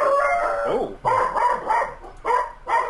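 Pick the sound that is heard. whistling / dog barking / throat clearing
dog barking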